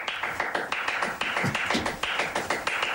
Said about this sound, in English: Before I do anything else, I want Spanish clapping. That's what I want.